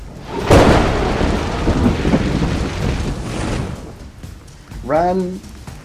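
A creature lets out a huge 60-foot cone of lightning breath: a sudden crackling electrical blast erupts and rolls into several seconds of loud, thunderous rumbling, then fades before a brief tonal roar rises near the end.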